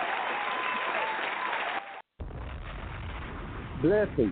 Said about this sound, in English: Let me put my hands together. Oh, thank you for the clap.